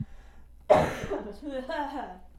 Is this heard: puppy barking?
no